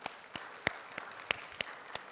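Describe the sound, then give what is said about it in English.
An audience at a worship service applauds its volunteers, with dense overlapping claps and a few sharper, louder hand claps standing out from the steady patter of the group. “Can we just give a round of applause to our faithful volunteers today?”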